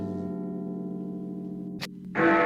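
The Big Ben clock-tower bell rings with a deep, sustained hum that slowly fades, then a brief clatter and a fresh, louder strike near the end, sounding the time. No voices.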